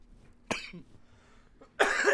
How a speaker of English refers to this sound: Still coughing.